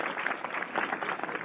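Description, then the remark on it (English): A studio audience applauds, a dense, steady wash of many hands clapping at an even, fairly loud level throughout, with no voices speaking over it. “This could be the first time that the in-studio crowd out-louded the actual sound cue.”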